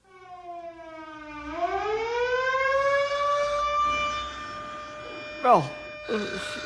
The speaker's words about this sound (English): what's that terrible siren wailing about? Is it an air raid?